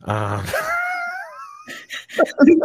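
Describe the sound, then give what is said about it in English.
A child in the background lets out a drawn-out, high-pitched scream that wavers and trails off, followed by a few short vocal noises. Moderately loud, with no talking over it. “Only one screaming kids in your background, huh?”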